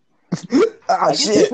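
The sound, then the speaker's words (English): A person imitates a hiccup with a couple of short, sharp vocal bursts, then a longer wavering, laugh-like voiced sound, fairly loud. “What about a hiccup? Is that like a 1 HP?”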